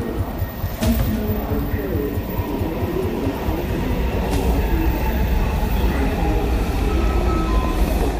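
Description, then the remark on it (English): A subway train on a daily commute from the suburbs of Washington, D.C. rumbles steadily with a continuous low roar and rattle, a brief squeal of wheels, and a sharp clunk near the start as the carriage rolls along. “Then the subway.”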